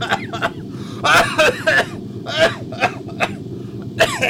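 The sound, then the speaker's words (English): Someone fakes a string of about seven short, forced coughs, rough and breathy, spaced irregularly, with a steady low hum running underneath throughout. “Your fake coughing sounds nothing like why I'm going to hack up a lung coughing.”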